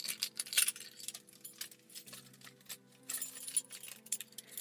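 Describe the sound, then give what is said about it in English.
A bunch of keys on a keychain jangles as someone picks them up and holds them, a scratchy, slightly abrasive clatter of metal and plastic pieces in irregular bursts, loudest near the start and again toward the end. “So, without further ado, here are my keys.”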